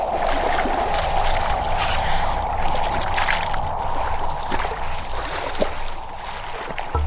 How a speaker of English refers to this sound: I kick and flail in the water and quickly make for the shore, somehow with the fishing gear still in hand.